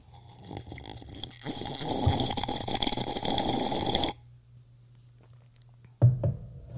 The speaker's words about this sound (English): I'm going to sip my coffee while you ponder the fact that I made the statement that I cannot stand stupidity.